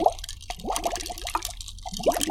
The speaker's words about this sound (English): Even now, I blew some bubbles in the milkshake.